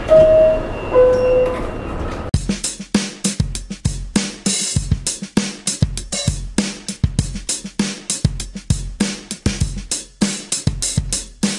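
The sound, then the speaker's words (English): A two-note descending door chime sounds, then a subway train pulls away with loud, steady rhythmic clattering of wheels over the rails, rumbling on without any voices. “Next stop, Daily Thoughts. Stand clear of the closing doors, please.”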